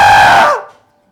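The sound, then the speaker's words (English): A voice mimics a shriek: a single loud, high, strained cry that holds for about half a second, then slides downward and fades into silence. “It came out of his mouth. It came out with a shriek.”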